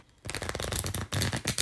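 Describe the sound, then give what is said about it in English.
A deck of We're Not Really Strangers game cards being shuffled, a quick burst of rapid riffling flutters with a brief pause before a final flurry, no voices present. “Can you give me the time to shuffle?”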